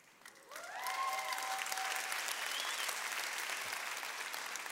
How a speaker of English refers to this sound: Now, she's the one you should be applauding. So, that she's been married to me for 54 years.